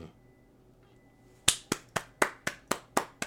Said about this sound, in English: I'll like hit the applause track on that.